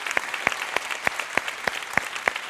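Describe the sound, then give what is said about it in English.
An audience applauding the church elders who have served and are serving, a dense wash of many hands clapping with a sharp, steady beat of louder claps standing out at an even rhythm. No one speaks. “Everybody look around at these guys, and let's applaud those who have served and are serving as our elders.”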